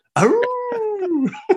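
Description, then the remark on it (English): A person imitates a wolf howl: a single loud, sustained wavering tone that swoops up, holds, then slides down, broken by rough breathy bursts near the end. “I'm a fan of my Wolfang impression. Kind of sounded like this. Basically, if you were depth charge, but a wolf.”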